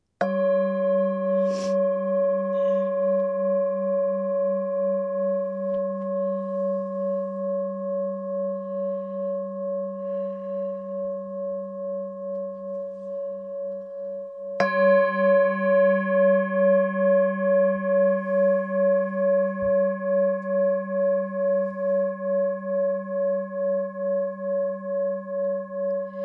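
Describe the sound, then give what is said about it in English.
A singing bowl is struck twice, about fifteen seconds apart, each strike ringing out in a long, clear, pulsing tone that hums steadily without fading away. No one speaks. “So here's my singing bowl. I'm going to ring it, and hopefully it's going to ring nice and clear with no backlash, because I noticed that with the cell phone, I get that echoing that happens.”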